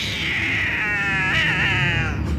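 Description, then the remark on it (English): A cat yowls in one long, wavering, drawn-out cry that rises and dips in pitch, loud over a steady low rumble in the background. “Tis my cat! Darting like a winged Egyptian god straight into the illimitable gulfs of the unknown.”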